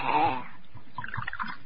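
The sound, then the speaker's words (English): Wine is poured into three glasses: a brief gurgling rush at first, then softer, uneven trickles and splashes, with no voices over it. “And now, before the king comes, I'll pour out three glasses of wine.”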